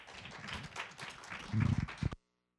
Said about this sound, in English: Let's give Dr. Terry Watson a round of applause.